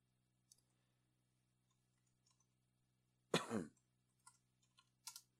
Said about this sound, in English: Give me a sec. I am typing.